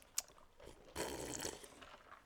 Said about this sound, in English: That was a big slurp. That was right in the mic.